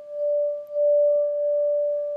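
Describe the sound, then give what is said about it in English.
A meditation bell rings with a pure, steady mid-pitched tone that hums on evenly, swelling slightly after a brief dip, with no voices. “Give you the sound of the bell moving through time again.”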